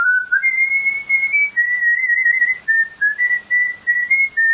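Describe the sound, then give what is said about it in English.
A person whistles a lively Celtic reel tune, a steady run of quick, bright notes with short breaths between phrases and no talking. “Usually like a Celtic kind of reel or something like that, getting in touch with my Irish roots.”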